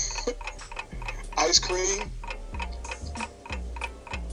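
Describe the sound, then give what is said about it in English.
A 30-second countdown clock ticks steadily, its sharp ticks coming about twice per second, while a brief burst of voice rises over the ticking partway through. “Your clock starts right now.”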